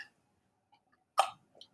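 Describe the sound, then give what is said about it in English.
A single short, rough throat-clearing burst, with faint mouth noises before and after, otherwise quiet. “That's one thing I'm going to have to work on with these podcasts, is not clearing my throat so much, because my mouth tends to get dry after a few minutes, and then it's not a pleasant sound to hear.”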